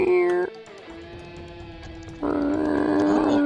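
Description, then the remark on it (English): A voice imitates a big cat's growling roar. It starts with a short tonal snarl, drops to a low sustained rumble, then swells into a louder, rougher roar that holds until the end. “You don't want this cat.”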